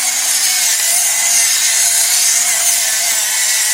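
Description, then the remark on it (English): A steady, gritty grinding rasp runs continuously for a few seconds, bright and loud, the crunchy mechanical scrape of a pepper grinder being twisted to add pepper to kale chips, with no talking. “That's my pepper grinder.”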